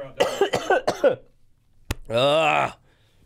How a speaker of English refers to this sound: I don't ever want to have this cough again. Need some hot tea.